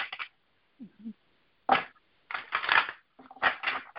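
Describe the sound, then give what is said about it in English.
A deck of cards being shuffled for a card reading: several quick, crisp riffling bursts with short pauses between, growing longer and busier toward the end, with no one talking. “I'm going to do a few cards for you since we have a few extra minutes, and that's going to help with the spiritual reframe.”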